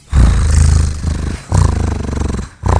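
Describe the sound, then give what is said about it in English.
A deep, rumbling purr comes in three long bursts, each throbbing with a rapid, steady flutter. It is loud and low-pitched, with short pauses between the bursts and no talking. “Doesn't that sound like a purr?”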